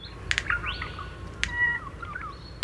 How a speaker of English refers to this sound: It has bill snaps involved in it, a clicking sound followed by a sort of upward whistling motion. It's very simple, like a lot of Australian bird songs, not like birds in Europe that go on for 20 to 30 seconds.